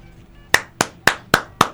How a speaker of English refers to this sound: Sorry, I'm scaring my dog by clapping.